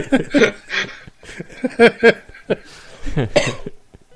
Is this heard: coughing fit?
yes